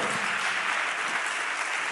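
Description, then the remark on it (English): An audience claps their hands to the Lord in a dense, steady wash of applause lasting the whole moment, loud and continuous with no clear individual beats and no voices on top. “Come on, somebody clap your hands to the Lord right now.”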